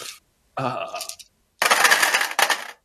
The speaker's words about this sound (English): let's see, that's 16 dice. Oh my. Damn. I know, right? All right. And now for the storm of dice.